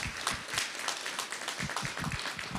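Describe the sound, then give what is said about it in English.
A church crowd applauds steadily for the people who help out, many hands clapping in a dense, crackling wash that holds an even, moderate loudness throughout, with no voices standing out. “Can we get a quick applause for everybody that does help me, those people right now?”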